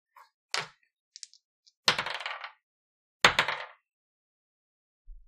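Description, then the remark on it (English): Dice rattle and tumble across a table: a few light clicks, then two separate bursts of sharp clattering, each bouncing and settling within about half a second. No one speaks. “will you please roll?”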